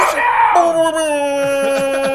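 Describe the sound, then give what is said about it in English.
A voice imitates an air horn with one loud, buzzy, sustained blast that jumps down in pitch early on, then holds steady for about two seconds with no talking. “We need someone in here all the time that can do the air horn sound.”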